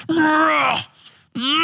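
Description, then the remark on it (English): A voice imitates a weightlifter's yell: one loud, strained shout held for under a second, its pitch edging upward, followed by a short pause and the start of another voiced sound. “Do you yell when you lift?”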